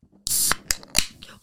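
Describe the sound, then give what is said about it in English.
A can of Sunbeam Pils craft beer is cracked open: a sharp pop releases a loud, bright fizzing hiss lasting a moment, followed by two quick metallic clicks from the tab. “I'm going to crack one open right now while we're talking.”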